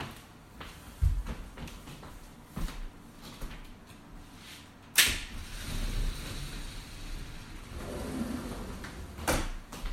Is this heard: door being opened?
yes